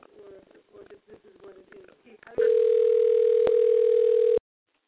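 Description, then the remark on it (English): A person talks briefly while placing a phone call, then a loud, steady telephone ringback tone sounds once for about two seconds over the line and cuts off, leaving silence; the call goes unanswered. “Okay, she ain't not picking up.”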